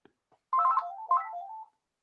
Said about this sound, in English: Who rings a landline? Get the phone. Answer it. Answer it live on air. Answer it on air.